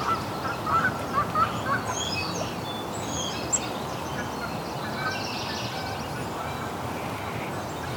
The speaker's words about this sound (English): Here's some Canada geese. Yeah, in the background you can hear a lot of warblers and starlings.